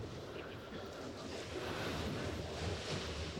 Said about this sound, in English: Yes, you're hearing waves.